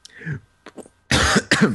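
A person coughs several times up close: a few short throaty hacks, then two loud, harsh bursts of coughing in quick succession.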